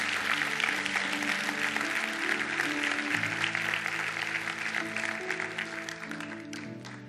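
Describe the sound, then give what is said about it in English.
During Holy Week, an audience applauds, giving God a hand clap for those who prayed a prayer, in a dense, steady wash of clapping over sustained organ-like chords that shift partway through, the whole thing tapering slightly at the end. “In Jesus' name, can we all say amen and give God a hand clap for those who prayed that prayer?”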